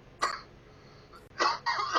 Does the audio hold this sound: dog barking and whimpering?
no